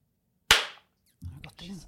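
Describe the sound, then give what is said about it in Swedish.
A single sharp hand clap cracks out loudly and rings off briefly, then a voice begins speaking a moment later. “Då rullar jag också och då ska vi klappa.”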